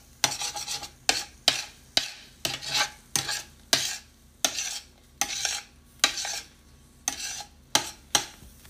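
A utensil stirs scrambled eggs in a frying pan in the morning with a steady run of about fifteen rasping scrapes, several ending in sharp metallic clinks, over a quiet low hum. No one speaks. Birds can be heard, and a little thumping noise is a dog, Sadie, scratching herself.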